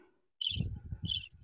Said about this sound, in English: Oh, wait, that's crickets.